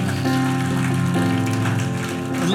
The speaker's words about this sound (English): Come on, you join me, and let's give a hand clap to these that pray today.